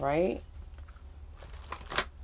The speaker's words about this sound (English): And here we go. So I'm shuffling the cards.